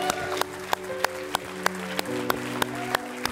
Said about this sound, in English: Some of you want to clap. Go ahead and join. Go ahead and do it. You know what? I'm going to clap with you one more time. Come on.